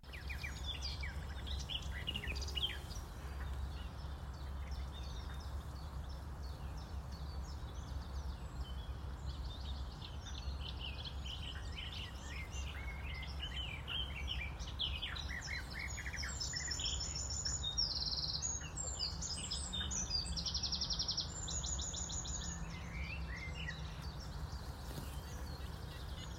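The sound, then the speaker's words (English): A busy outdoor chorus of birdsong in the woodland and wetland habitats of Gosforth Nature Reserve in Northumbria, with many chirps and trills from several birds overlapping across the whole stretch, over a steady low rumble of background ambience. “What you heard there was a field recording that I did last week.”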